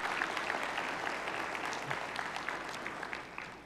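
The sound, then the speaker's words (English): A steady round of audience applause for a group of middle schoolers, dense overlapping claps with sharp bright transients sustained evenly for several seconds and tapering slightly toward the end, with no voices standing out. “We're a round of applause for you, too.”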